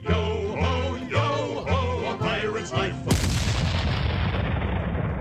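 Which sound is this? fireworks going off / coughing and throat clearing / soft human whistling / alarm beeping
fireworks going off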